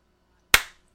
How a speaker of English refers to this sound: I'm going to clap and then we'll get back into it.